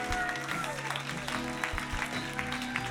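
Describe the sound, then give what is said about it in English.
An audience at a church service applauds steadily as a group of people head out, a dense patter of many hands, with sustained musical tones and some voices running underneath. “Let's give them a hand as they go.”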